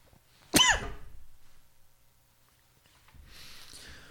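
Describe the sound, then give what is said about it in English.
A single stifled sneeze bursts out sharply and fades over about a second, followed by a pause and then a softer, breathy hiss of air. No one speaks. “I'm about to sneeze. This can get violent.”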